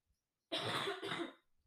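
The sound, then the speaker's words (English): Two harsh, loud coughs in quick succession, with no talking around them. “I'm sorry if you heard that. Me coughing.”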